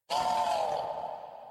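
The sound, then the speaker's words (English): A person vocally imitates an owlbear growl: one loud, raspy, breathy roar that starts abruptly and holds for about a second and a half before slowly trailing off. “Okay, that's an owl bear.”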